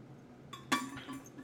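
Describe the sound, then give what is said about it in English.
A short clink of a water bottle being picked up for a drink, one sharp bright knock followed by faint handling and shuffling, with no talking. “But, hold on, I'm gonna drink some water because I think I'm really dry.”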